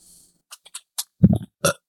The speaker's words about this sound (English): That was my sexy burp, just for you.